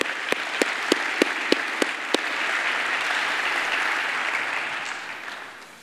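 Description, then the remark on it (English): Audience applause at a church service: a handful of sharp, evenly spaced claps open it, then a dense, steady wash of many hands clapping that holds and fades toward the end. “We so appreciate you, and I'd like to give you a little bit of applause there.”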